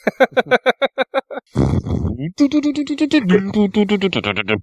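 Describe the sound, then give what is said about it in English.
A pet bird named Tom mimics the intros of dubstep songs: a fast run of stuttering pulses, then a low, buzzy wobbling growl, and finally loud warbling electronic-like tones that bend up and down in pitch. “So this bird, does he naturally make this noise, or someone taught him and said, hey, you're going to learn how to do dubstep?”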